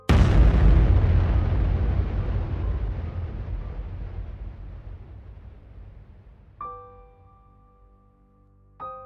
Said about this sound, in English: Suddenly, a whistle from the sky and a huge explosion.